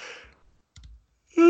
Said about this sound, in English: Excuse me. Why am I yawning already? It's 9:15 in the evening.